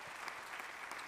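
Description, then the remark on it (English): An audience claps together in steady, dense applause, a continuous wash of many hands without pauses, fairly quiet overall and with no voices standing out, clapping for the 41 people baptized in the pool the previous Sunday. “41 people were baptized last Sunday in the pool, and you can clap.”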